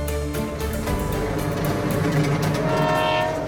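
A train rumbles along the railway while its horn sounds in a long, steady, loud blast, with a continuous mechanical roar underneath and no voices.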